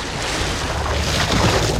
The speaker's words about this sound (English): Just then, a skiff emerged from the water and floated to shore.